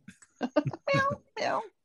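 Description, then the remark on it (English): A person imitates a cat, giving two drawn-out, whiny meows after a few short vocal syllables. The voice is fairly loud and nasal. “Meow. It's not time to eat yet.”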